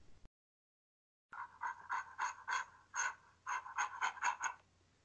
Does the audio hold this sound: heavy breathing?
yes